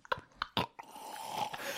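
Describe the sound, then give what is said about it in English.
Someone takes a drink of water: three quick wet gulps or swallows, then a soft, steady exhale as the sip ends. No one speaks. “Hold on, I need a drink of water.”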